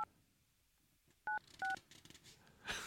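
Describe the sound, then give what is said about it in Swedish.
A telephone number being dialed: a few clear dual-tone keypad beeps in an uneven sequence, with soft handling noise in between and a brief rustle at the end. “Jag vill ha på att slöja numret här, så.”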